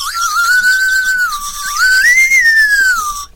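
A whistle pop candy whistle, shaped like a recorder mouthpiece on a hollow, thick lollipop stick, is blown in one continuous, fairly loud breathy tone, its pitch wavering, dipping briefly, then sliding up to a higher note before easing down. No talking.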